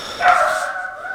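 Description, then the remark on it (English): A dog lets out a single bark that trails into a drawn-out, whiny tone, heard clear with no one talking over it. “My dog's ruining the episode already.”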